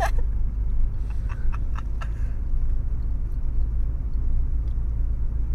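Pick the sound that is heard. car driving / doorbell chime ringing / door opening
car driving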